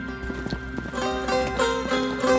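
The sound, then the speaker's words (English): Horses' hooves clip-clop in a steady, even rhythm at moderate loudness, with a sustained tonal hum or music-like drone running underneath. No one speaks. “And to help you on your journey, I'll give you some horses and I'll give you some money and I'll give you some food.”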